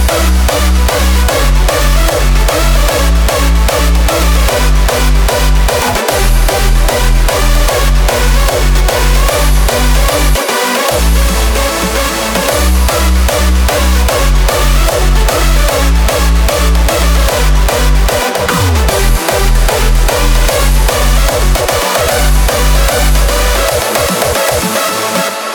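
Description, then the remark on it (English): The Mega Sound, a very low-pitched tone boosted greatly in volume: very deep, heavily boosted bass tones throb in a steady pulsing rhythm, loud and sustained, beneath a dense layer of bright music, with brief dropouts along the way and no talking. “Such tones cease being heard as a musical tone unless they are boosted greatly in volume.”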